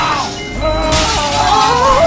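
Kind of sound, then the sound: sound effect, glass shattering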